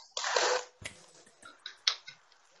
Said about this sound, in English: You might have heard them all clapping there, so it's getting better.